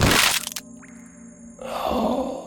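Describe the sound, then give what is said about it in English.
A harsh, loud crunching crack of a body crashing face first into the ground bursts out at the start, then drops to a low hum before a rough, grinding noise swells up and holds to the end. No one speaks. “And then simultaneously with you, Twigs crashes face first into the ground. And you hear a very nasty crunch.”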